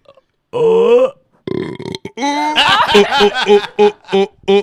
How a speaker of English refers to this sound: That was just showcasing the fact that you can burp on command. I know, that wasn't a frog.